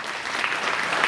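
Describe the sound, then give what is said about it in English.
Steady applause from a church audience for the volunteers serving in North Valley Kids, many hands clapping in a dense, even wash of sound that holds at a constant loud level with no voices standing out. “Let's give those workers a big round of applause if you serve in kids.”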